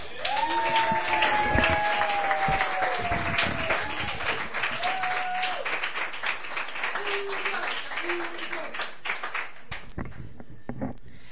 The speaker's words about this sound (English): can everyone give a wonderful round of applause for Tatum?